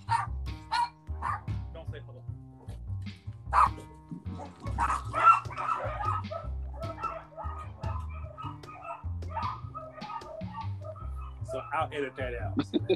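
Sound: dog barking indoors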